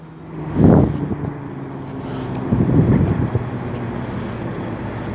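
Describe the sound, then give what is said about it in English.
A really big truck rumbles along a street with a deep, steady low-frequency engine drone, swelling loudly twice before it stops and settles into a continuous idling hum. “There's like a really big truck.”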